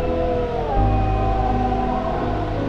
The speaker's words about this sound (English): Wolves howl once again in the deep distance.